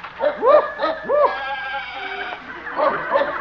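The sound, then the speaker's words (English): Farm animals bleat in an animal shed, several wavering, nasal cries overlapping in a busy chorus, loud at first, then a fresh burst of bleating near the end. “The old horse doctor is probably back here in his animal shed.”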